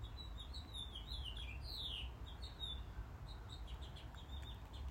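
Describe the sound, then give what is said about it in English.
A small bird that is red, but not completely red, chirps repeatedly in quick, high-pitched bursts, with other faint tweets around it, all fairly quiet over a steady low background rumble. No one speaks. “It's red, but not completely red.”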